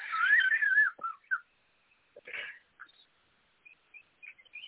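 A pet bird sitting behind one of the speakers whistles a warbling, wavering phrase, then follows with scattered short chirps and tweets, some bright and high, with brief pauses between them, with no talking.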